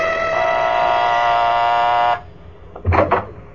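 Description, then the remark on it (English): The doorbell of a house on the east side of town rings as one long, steady electric buzz lasting about two seconds, rich and harsh in tone, then cuts off abruptly, followed by a few brief soft knocks and rustles. “I rang the doorbell.”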